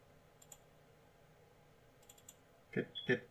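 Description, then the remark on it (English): A few soft, scattered clicks of buttons on a soundboard, then two louder, sharper clicks in quick succession near the end. “I'm clicking on the button!”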